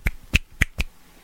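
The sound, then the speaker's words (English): Four sharp finger snaps in quick succession, crisp, with a slightly uneven rhythm and no talking. “What's the sound of one hand clapping? Nothing! It's snapping, you idiot.”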